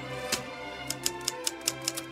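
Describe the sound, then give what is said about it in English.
A typewriter sound effect: keys strike in a quick, slightly uneven run of sharp clacks, about eight in a couple of seconds, over a low steady hum with no voices. “There is no need to insert classical music when Anderson refers to classical music, or to bring in the sound of a typewriter just because Anderson recalls his father writing.”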